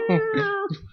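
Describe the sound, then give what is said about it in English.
A person voices a single drawn-out cat meow, fairly loud, with a steady pitched tone that trails off after about a second. “Meow.”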